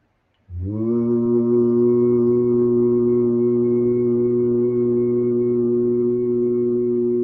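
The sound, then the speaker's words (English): A single low, steady hummed vocal tone, made on an exhaled breath during a breathing and toning exercise, begins abruptly after a brief silence and holds unwavering for about seven seconds, rich in even harmonics, with no words or other sounds. “The main point is to just focus on your breathing and just making a sound.”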